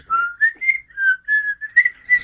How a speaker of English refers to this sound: How many episodes have we whistled on? I was going to say, we're going to tackle the whole whistling thing again? No, we're not going to whistle again.